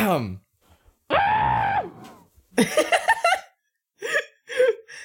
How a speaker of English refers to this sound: This is just us screaming.